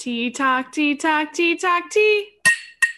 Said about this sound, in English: Wow, that was so loud. Polishing a cup. Zoom freaked out about that.